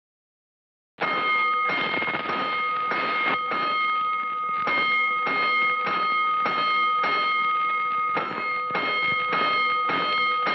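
Fire station alarm bells ring five bells for a five-alarm fire, loud, a harsh metallic clanging with a rapid pulsing rhythm that starts abruptly after a second of silence and keeps going without pause.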